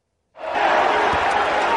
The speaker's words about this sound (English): You can't hear him over the crowd, and that may be a good thing, as Auburn University coach Bruce Pearl sneers and snarls his way through yet another basketball game.